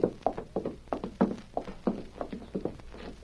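Hooves of horses waiting with a stagecoach clip-clop in a steady, uneven rhythm of repeated knocks, moderately loud, with no voices over them.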